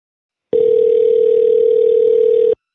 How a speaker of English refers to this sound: Even her ringtone's annoying.